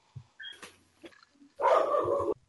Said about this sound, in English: I don't know if you all realize, but as soon as... Squee said that the spider attacks Arlen. My dogs decided to start barking. They do not want Arlen to be attacked.